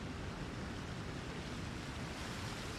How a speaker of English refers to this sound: I like this little waterfall here, this little trough. This is very nice.